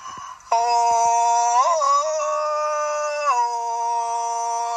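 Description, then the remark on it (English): A human voice lets out one long, loud, medium-pitched Tarzan yell, a sustained, strongly harmonic call with a quick yodelling warble early on and a step down in pitch near the end. “Oh, that was a mild one. A medium-pitched Tarzan yell.”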